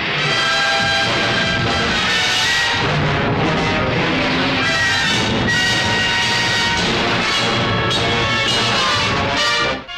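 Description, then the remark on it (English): A meteor storm rumble sound effect: a loud, unbroken roar with layered droning and whistling tones over a rattling, churning low end, sustained for the whole stretch with no voices. “Meteor storm!”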